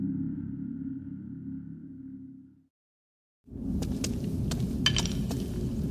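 Bones clatter as they are kicked in an ossuary, a handful of sharp, hollow clinks scattered over a low rumbling background that follows a steady hum and a brief silence.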